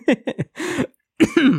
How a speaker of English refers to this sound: and there's a cough.